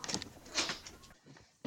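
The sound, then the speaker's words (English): A door is opened to let a cat in: a quiet scrape and rattle over about a second, a short pause, then another brief clunk of movement. No one speaks. “Sorry, one second, I just need to rescue my cat.”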